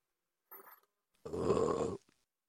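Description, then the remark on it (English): A brief soft throaty noise, then a single loud, low, rumbling burp lasting most of a second, gravelly and guttural, with no talking around it. “Oh, you're laughing at my burp.”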